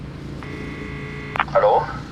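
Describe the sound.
A steady electronic phone tone holds for about a second as a call rings through to a man's phone, then cuts off with a click as a voice starts talking over a faint background hum.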